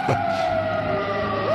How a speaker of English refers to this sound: Would you like some sirens and a humming engine? Yeah, let's hear that.